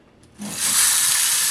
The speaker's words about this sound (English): And let's test it out, see what it sounds like. So here we go. 3, 2, 1, rain stick.